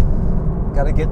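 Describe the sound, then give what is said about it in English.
A voice imitates the engine of a little Toyota car, a Toyota Yaris, with a low, steady buzzing drone, then briefly rises into higher revving tones near the end. The sound is fairly loud. “I got a little Toyota, what is that car that Toppy has?”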